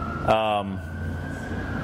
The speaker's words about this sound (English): Sorry, there's another siren behind me, so that's why I'm smiling.